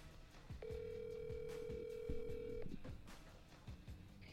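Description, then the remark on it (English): A telephone line rings with a single steady tone lasting about two seconds, fairly clear over faint low background rumble and clicks, with no one talking. “So here's that phone call.”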